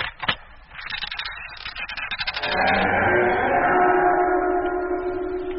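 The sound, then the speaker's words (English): The old door of a dilapidated building rattles and scrapes at its latch, then swings open with a long, loud, drawn-out creaking groan that wavers in pitch for several seconds. No one speaks. “I just felt a kind of foreboding as that door opened, that's all.”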